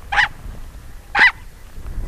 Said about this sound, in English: In addition to yelping at public radio reporters who venture too close to its den, the Ethiopian wolf is a creature of the day instead of the night, and howls not at the moon, but the sunrise.